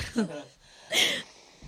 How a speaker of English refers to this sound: I'm blowing my nose. Play by play. But I'm blowing it. Nothing's coming out. That's the thing. I just have this urge to blow it.